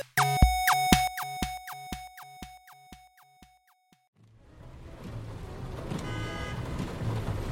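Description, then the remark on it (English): A quick run of bright, evenly spaced tonal notes fades out, then a steady wash of city traffic noise on a stormy, rainy day rises, with a car horn sounding through it. “I think we have picked a pretty stormy day to be driving in the city.”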